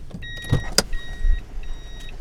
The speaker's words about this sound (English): Sorry, I'm just parking my car here.